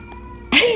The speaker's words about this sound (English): He will just walk in and just start meowing at me like for no reason. Nothing's wrong. He just wants to be part of the conversation. There he goes.